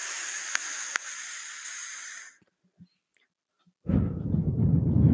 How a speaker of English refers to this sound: That's that vape, man.